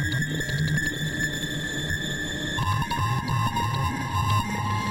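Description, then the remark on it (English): A modular synth sample-and-hold pattern: sustained electronic tones that jump to new pitches in irregular steps, over a busy, pulsing low-end texture. It plays alone at steady volume, with no voices. “The 750 hertz band is being controlled by the sampling modulator, which is just outputting sample and hold of the Pico R&D noise, basically.”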